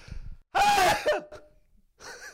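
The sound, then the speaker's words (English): A single loud, explosive sneeze bursts out after a low murmur, with a voiced, squeaky tail that drops off quickly; a short pause follows before someone starts speaking. “COVID people don't sneeze.”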